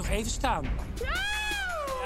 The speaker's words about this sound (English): Oh, that's a strange sound. No! Like a cat, right?